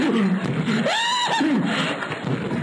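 A horse whinnies once, a loud, quavering neigh that rises and falls over about a second, with a brief snort before and after and no talking.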